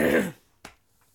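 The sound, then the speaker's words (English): A short, rough cough and throat clearing, followed a moment later by a single sharp click, then quiet. “I'm working on not coughing primarily.”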